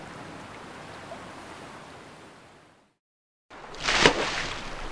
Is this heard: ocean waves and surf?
yes